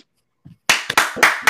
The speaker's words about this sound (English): Clap it up, you bastards. Hold on. I got you. Hold on, pal. Make some noise. Yeah. Clap it up, goddammit.